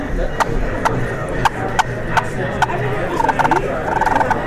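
A wild turkey calls with a series of sharp, evenly spaced clucks, then breaks into quick rattling bursts of notes over a steady outdoor background hiss.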